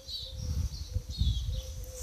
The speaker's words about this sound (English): When I sit in my garden, and I wish to share it with you, and I wish you will enjoy it too. There is too many things to listen to. These tweets, birds, nature, and all around.